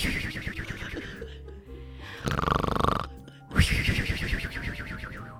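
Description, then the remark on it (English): A person mimics a woman's loud snoring with their voice: a rough, rumbling inhale, then a loud breathy blowing exhale with a whistle, repeated twice. “Well, she snores and she'll go the whatever. But then there's the whistle, the...”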